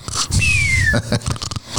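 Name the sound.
imitated snoring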